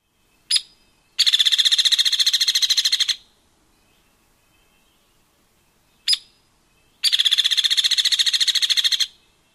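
A hairy woodpecker calls twice, each time a sharp single peek followed by a fast, even, high-pitched rattle lasting about two seconds, loud against a quiet background.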